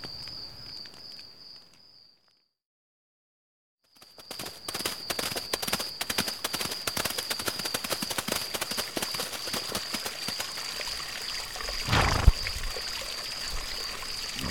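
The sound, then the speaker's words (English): A stream where riders have brought their thirsty horses flows with a steady, broad rushing and splashing after a brief silence, scattered with sharp hoof-like clops and a thin, constant high-pitched tone running over it. “I'm glad we found this stream.”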